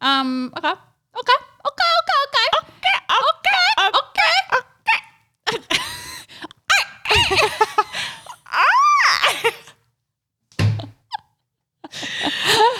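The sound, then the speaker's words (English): A person imitates a bird, voicing a string of warbling, pitch-sliding squawks and chirps, then a long rising-and-falling cry, with brief pauses between bursts. “You sound like a real bird.”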